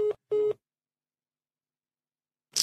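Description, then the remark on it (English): A phone line's disconnect tone as a phone call is cut off: two short, steady electronic beeps in quick succession, then silence, ending with a brief burst of hiss. No one speaks. “the dog phone cut off.”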